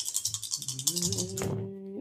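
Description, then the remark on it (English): Dice are re-rolled in a game, rattling and clattering in a quick burst of sharp clicks lasting about a second and a half, while a low, steady hum from a voice rises underneath and lingers after the clatter stops. “Or come up as a 6 or a 1 and roll them again.”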